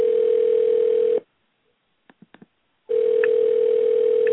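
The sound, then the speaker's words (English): A telephone rings over the line at the start of a Roy Wood Jr. prank call: a steady, filtered ring tone sounds, cuts out for a pause with a few faint clicks, then rings again. No one speaks. “prank call.”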